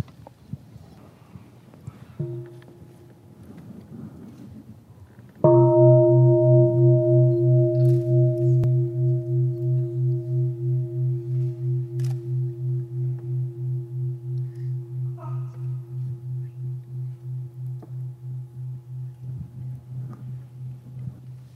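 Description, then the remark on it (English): A deep meditation bell is struck once and rings out loudly, its low resonant tone pulsing with a slow waver as it fades gradually over many seconds, preceded by a faint soft tap. It is rung before a question at a question-and-answer session at Stonehill College on August 16, 2007. “Listen to the bell and breathe three times before you ask the question.”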